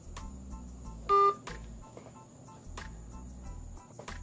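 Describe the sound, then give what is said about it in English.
A phone line breaking up, with choppy, crackling bursts of garbled noise and a single short, loud dial-tone beep partway through. No voices come through clearly. “His phone done, you know what I'm saying, tapped out.”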